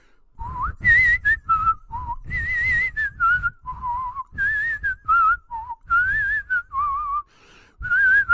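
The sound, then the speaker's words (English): A person whistles a slow, mournful, depressing melody alone, with gliding notes in short phrases separated by brief pauses, clear throughout. “Whistle something depressing.”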